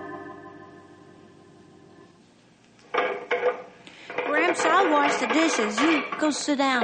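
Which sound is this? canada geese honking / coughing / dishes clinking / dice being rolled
dishes clinking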